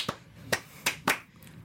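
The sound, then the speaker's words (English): Slow clapping: about five sharp, bright claps spaced unevenly across under two seconds, each a crisp smack with brief pauses between, and no voices. “All right, slow clap. We're slow clapping.”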